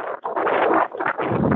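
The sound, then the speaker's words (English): Storm wind roars in a steady, rough rush, surging in gusts with a couple of brief lulls, during a winter storm in the Pacific Northwest, heard by people living aboard a boat; loud throughout, with no voices. “As you can hear, I called Patty back at an exciting time, in the middle of this storm.”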